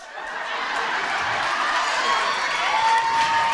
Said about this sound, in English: Clap, go ahead, clap.